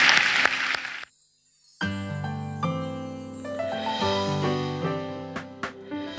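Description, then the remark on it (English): A church audience claps loudly for about a second as a clap offering to the Lord at the close of a service, before it cuts off abruptly; after a short silence, sustained keyboard music with steady chords begins. “Come on, let's give the Lord a clap offering, shall we?”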